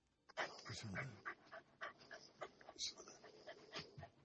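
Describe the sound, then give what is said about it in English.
A dog pants quickly and steadily, a rapid series of breathy huffs continuing throughout, with a brief low whine near the start. “Things like huffing and puffing over there.”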